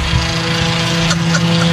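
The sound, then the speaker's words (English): A small Nissan Altima car with a broken muffler roars by, a loud, raspy engine drone that holds steady and unbroken for the whole moment, with a harsh buzzing edge over the low rumble. “If you're driving around and you got a car like that, fix your muffler, please.”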